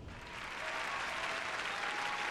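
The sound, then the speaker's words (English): An applause sound effect, many hands clapping in a dense, steady wash that swells quickly and holds at a fairly loud level with no talking over it. “So welcome, my international listeners. I applaud you.”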